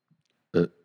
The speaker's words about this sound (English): Sorry. You know, I burped earlier.